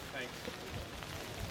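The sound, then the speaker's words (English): Light rain patters steadily on an umbrella overhead at an outdoor prayer station, a soft, continuous spatter with faint murmuring voices in the background. “There's a light rain falling here, so you may hear some spattering on the umbrella, but we will get through it in Jesus' name.”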